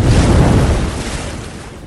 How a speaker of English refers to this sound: We grappled, neither one able to get the upper hand, when suddenly the boat crashed.